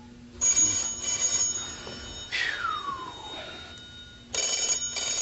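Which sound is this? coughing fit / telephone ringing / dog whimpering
telephone ringing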